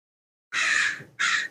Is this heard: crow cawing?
yes